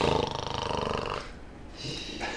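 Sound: person imitating snoring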